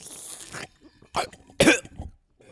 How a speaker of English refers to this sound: I'm choking. That's because you took too big a sip.